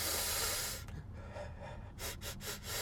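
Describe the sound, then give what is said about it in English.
A long, breathy inhale is followed after a pause by three or four quick, sharp sniffs in a row, with no talking, as someone sniffs a robot butler to find out what he smells like. “Why don't you give him a sniff and find out?”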